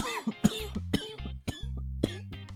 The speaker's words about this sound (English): Oh, wow. Oh, that one, that cough put a lot of pressure to my skull. In a good way, though, like, wow.